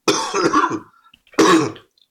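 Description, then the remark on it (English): Two loud coughing bursts, the first longer and rougher, then a short pause before a second harsh cough, heard alone with no talking. “while I cough here”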